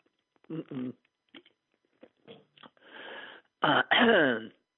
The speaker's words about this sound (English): remember when a cough was just a cough? Man, those were the good old days.